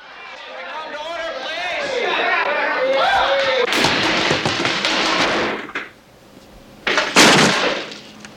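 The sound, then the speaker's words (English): A teacher slams a chair down hard on a classroom floor with a loud, sharp crack, cutting through the overlapping chatter and scuffling voices of students goofing around, which go briefly quiet beforehand. “some not so good students, some troubled students, and he comes into class and kind of the first episode slams down this chair because they're all kind of goofing around.”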